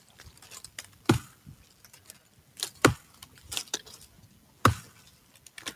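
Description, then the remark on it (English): Three heavy, sharp thwacks of an axe chopping into a tree, landing at a slow, steady pace about two seconds apart, with fainter knocks and rustling between the blows. “Oh, it could be chopping wood. Chopping a tree is what it is.”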